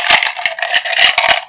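A six-sided die (d6) is rolled for a spell's positive energy damage, rattling and clattering in a quick run of bright, sharp clicks over about a second and a half, fairly loud and with no voices.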